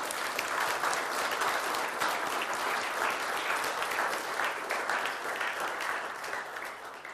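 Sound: round of applause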